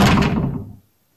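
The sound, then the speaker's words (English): A closet door swings open with one full, resonant wooden thud that rings briefly and fades to silence within a second. No voices are heard. “The closet door. Did you make it open?”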